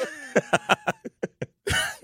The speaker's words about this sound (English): CEO, I got a cough.